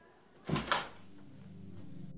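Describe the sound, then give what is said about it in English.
A door off a school corridor swings open with a short burst of creaking and scraping lasting under half a second, followed by a steady low hum. “And it's all going on behind this door. Let's go inside.”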